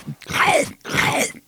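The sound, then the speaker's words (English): Someone chews ice, with two loud, gritty crunches a moment apart and a brief pause between them. “If I want to hear somebody chewing chips, I'll listen to Three Sides. It's ice.”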